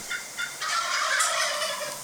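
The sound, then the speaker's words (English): A wild turkey, a close bird about 5 yards away, gobbles in a loud, rapid rattling burst lasting about two seconds, preceded by a couple of short clucks, with no voices present. “I think that's that last one, that's the close one that was like 5 yards from you.”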